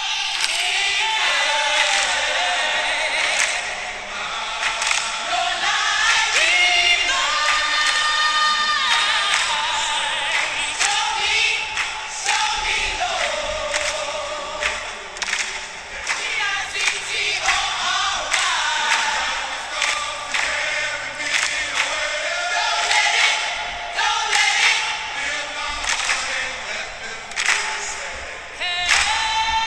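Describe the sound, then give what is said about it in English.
A church choir sings sustained, layered notes as wrestler John Cena makes his entrance, over a dense, constant roar of a large wrestling crowd, with scattered claps and shouts; the choir is booed. The mix stays loud and busy throughout. “when John Cena came out to that choir.”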